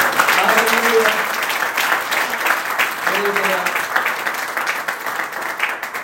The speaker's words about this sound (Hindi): Come on ताली बजाएं।